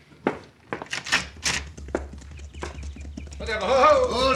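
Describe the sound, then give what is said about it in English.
Horses' hooves clip-clop in an uneven, loping rhythm as riders arrive on horseback, distinct, with low rumbling underneath; near the end, voices begin talking over the last steps. “Get down off your horses and come in.”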